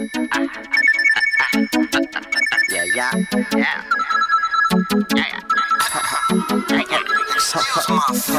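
A bright, melodic phone ringtone plays loudly and up close, its looping tune repeating over steady sharp percussive hits for several seconds.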